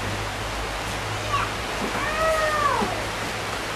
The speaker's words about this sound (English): Please listen, don't be distracted with the rain.